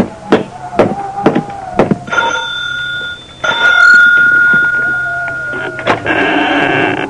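A few sharp taps come first, then the doorbell of a big, lonely 10-room house in the middle of nowhere rings with bright, sustained chiming tones that hang in the air for several seconds before a short buzzy burst at the end.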